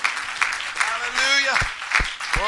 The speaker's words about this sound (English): Let's clap our hands one more time right now. Amen.